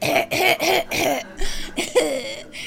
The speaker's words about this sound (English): I recorded her video from YouTube. I saved the recording and cut that song. And she coughs in the middle of it.